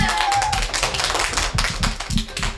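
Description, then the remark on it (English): A dense round of applause from a group after a correct quiz answer, many hands clapping in a fast, overlapping patter that stays loud and steady throughout, with no voices over it. “Oh, well done, everybody. A big round of applause.”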